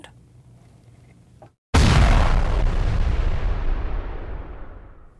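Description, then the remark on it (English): After a low background hum and a brief hush, a massive explosion that wiped out a tunnel network erupts with a sudden loud boom, followed by a long, roaring rumble that gradually fades over several seconds. “The IDF releasing this video that it says is the explosion that wiped out the tunnel network”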